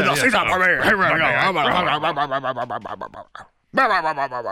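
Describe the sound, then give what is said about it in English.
A voice imitates Vince McMahon as a growl: a long, rough, wordless rumble that breaks into choppy bursts, goes briefly silent, then returns loud. “All he does is growl.”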